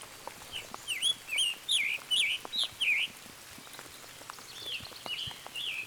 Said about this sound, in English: Actually, listen. There it is, right there. Scarlet Tanager, right above us. Right up there. So you've got an app on your phone with the bird call. See him right there. See how bright he is. That was him.